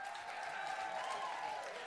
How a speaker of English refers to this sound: They'll give a round of applause for them. Thank you.